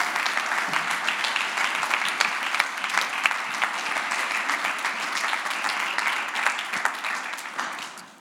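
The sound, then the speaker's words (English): A crowd claps steadily for several seconds to welcome a speaker coming forward, a dense, even patter of hands that holds at moderate loudness before tapering off at the end. No one speaks. “Let's give him a round of applause as a welcome.”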